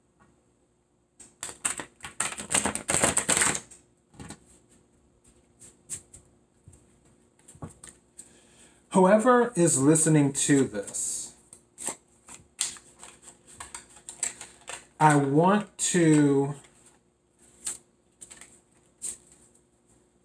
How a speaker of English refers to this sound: just pull a tarot card to see. And also I need to work on my shuffling too.